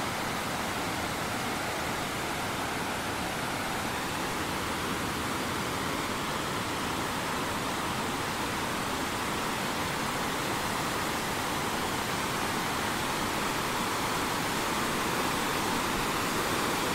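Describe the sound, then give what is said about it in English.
A steady, full roar of rushing water pours on without a break, loud, a heavy flow spilling over a dam, with no voices. “There's a blue heron. There's the dam.”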